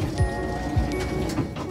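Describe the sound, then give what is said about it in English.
Elevator doors sliding shut with a mechanical whir, three low swooping thuds spaced about half a second apart over a steady hum and faint high tones, at moderate loudness with no talking. “Please stand back from the closing doors.”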